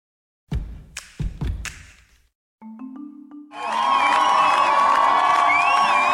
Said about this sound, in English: Hundreds of Iranians gathered at the airport in Tehran to greet and cheer for rock climber Elnaz Rakabi early this morning.